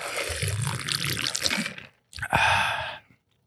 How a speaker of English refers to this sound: So I do like this sippy lid. Let me get a sip of this Pepsi.